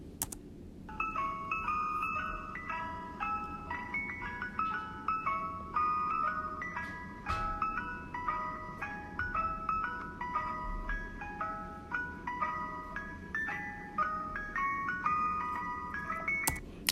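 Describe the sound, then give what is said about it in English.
A tinny, music-box style ice cream truck jingle plays continuously, its bright stepping melody repeating over a low rumbling background, steady and fairly loud with no voices, heard from inside a house at around 6:30 p.m. “So, if you said ice cream truck, that's what I thought of when I heard the sound, and actually heard it yesterday around 6:30 p.m.”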